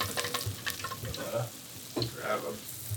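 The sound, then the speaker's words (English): Beignet dough, dropped by hand into hot oil, sizzles with a steady, busy crackle, broken by sharper pops and bursts of bubbling over three seconds. No one speaks. “I'm going to put my hand in the dough and then drop that dough into the oil.”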